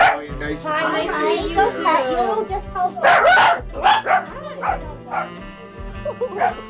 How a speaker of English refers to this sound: When we pull up to John's Roast Pork in an industrial area right by the river, we make a beeline to the small trailer office behind the very small restaurant, and here we are greeted by two barking dachshunds